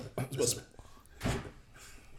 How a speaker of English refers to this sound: You slammed the laptop.